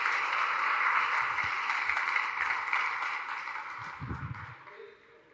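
A crowd applauds steadily, a dense wash of many hands clapping at once that holds for several seconds before gradually tapering off, with a brief low thump near the end.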